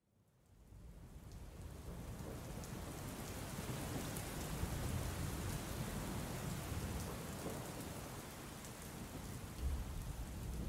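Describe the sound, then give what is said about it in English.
Steady, heavy rain pours down in a dense continuous hiss, with low rumbling thunder rolling underneath and a brief stronger rumble near the end. No voices are present. “It was a dark and stormy night in the little town of Alton.”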